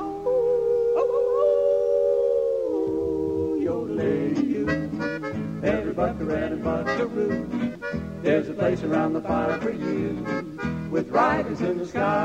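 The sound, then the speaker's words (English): A long, drawn-out howl rises and holds for about three seconds, then lively, busy band music takes over and carries on loudly to the end. “We're going to hoot and holler and howl at the moon.”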